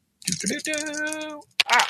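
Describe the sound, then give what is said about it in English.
Purple and blue dice, rolled for a risky delve check in a game, rattle and clatter across a table in short bursts, with a sharp click near the end. A long, steady voiced tone drones through the middle between the rolls. “No, wait, fuck these dice. These have betrayed me. We're going with the purple and the blue.”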